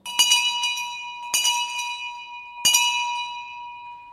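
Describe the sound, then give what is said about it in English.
An old hand bell rings three times at uneven intervals, each sharp metallic strike leaving a bright, shimmering ring that lingers and slowly fades, fairly loud with no voices. “I don't know when that bell was last rung, maybe by some curious person who took it out of the safe.”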